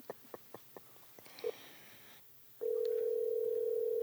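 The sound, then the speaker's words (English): A run of quick, evenly spaced dialing clicks and a brief blip as a phone call is placed to Bun B, then a short lull before a loud, steady, unbroken telephone dial tone holds to the end. “Let's call the king of the trill.”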